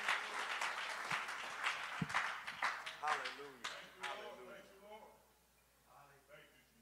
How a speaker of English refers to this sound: Come on, would you clap your hands to the Lord as you're seated?